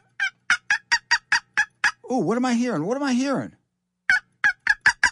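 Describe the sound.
Wild turkeys call: a quick run of sharp, evenly spaced clucks, then a long warbling gobble, then more clucks. A person briefly speaks.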